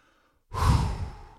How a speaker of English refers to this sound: All right, keep breathing, people. Come on, take a big deep breath with me.